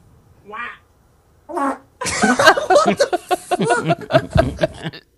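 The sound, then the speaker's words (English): Two short, buzzy fart-like bursts, a woman's vocal imitation of a fart and a man's real fart in a couple's guess-the-fart game, are followed by several seconds of loud, pulsing laughter from more than one person. “And then she's got to verbally make the noise of what she thinks his fart's going to sound like.”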